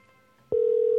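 After a half-second of quiet background, a loud, steady electronic telephone tone switches on abruptly and holds unbroken to the end, the ringing of an outgoing call to a barbershop. No one speaks.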